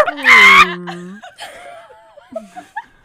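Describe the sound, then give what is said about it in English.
Several people burst out at once on the count of three, imitating farm animals and a whale: a loud overlapping chorus of clucks, moos and bleats that trails off into scattered squeaks and chuckles. “All right, so on the count of three, we're all going to do our animals.”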